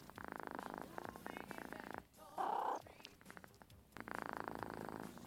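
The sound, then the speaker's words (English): A cat purrs steadily while a person asks it questions, the rumbling broken midway by a short, higher vocal call before the purring resumes. “Just him asking questions to a cat while the cat makes noises.”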